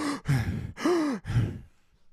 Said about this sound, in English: All right, then don't breathe hard into the mic.